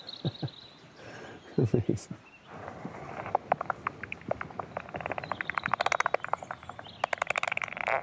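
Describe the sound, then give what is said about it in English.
Bat detector output of a bat's echolocation feeding buzz as it zips in to catch an insect: a run of sharp ticking clicks that speeds up into dense, rapid bursts, like a brief raspberry-like buzz, with a few muffled low sounds near the start. “You hear that raspberry sound? Yeah. That's the feeding buzz.”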